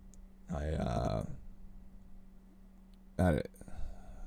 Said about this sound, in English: Excuse me. I drank my coffee too fast. Made me want to burp.